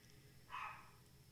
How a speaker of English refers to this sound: Was that the little doggy barking? Yeah.